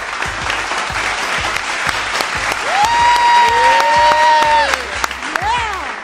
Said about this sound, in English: We got this guy is an icon in hip-hop. You already know. …, Superman, is in the building. Clap it up.